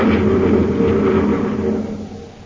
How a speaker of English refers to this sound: Buzz and Happy are in the surface car driving through a mountainous region of Mars